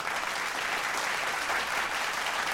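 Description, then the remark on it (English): An audience claps steadily, a dense, even wash of many hands applauding at a constant level with no pauses or voices standing out. “So let's clap another double down.”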